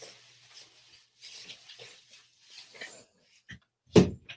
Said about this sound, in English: Closed door. Sorry.